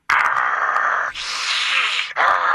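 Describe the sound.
A person imitates the growling of a bear in a crawl space with a harsh, raspy, breathy rumble, held for about two and a half seconds with two brief dips, loud and steady, and no other talking.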